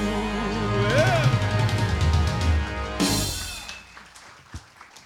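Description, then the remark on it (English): A live gospel song with a held vocal line winds down, then a loud burst of audience applause and cheering for the band breaks out and fades within about a second, leaving a few scattered claps. “Give the whole band a big round of applause tonight.”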